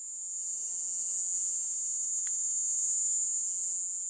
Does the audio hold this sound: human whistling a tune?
no